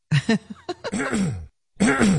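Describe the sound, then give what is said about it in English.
A man's voice imitates throat clearing: a rough sequence of short, gravelly grunts swelling into a drawn-out groaning clear, a brief pause, then another harsh burst. “…, now you're clearing your throat before you come in the studio”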